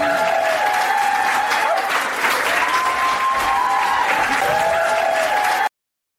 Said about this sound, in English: Oh, I'm going to press the wild applause button then.